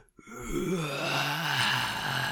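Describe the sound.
A person voices a deep, guttural roar, a low growling cry held for about two seconds with a slightly wavering pitch, loud and steady from a quick start.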